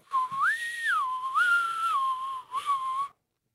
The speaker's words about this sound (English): I'm going to blow my whistle again. Don't bite Rat-a-Tat.